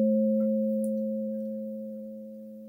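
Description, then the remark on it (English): A singing bowl rings on alone during a guided meditation, a steady low hum with a brighter overtone above it, fading slowly and smoothly across the whole stretch. “Listen to the silence in between words or in between the ringing of the bowls.”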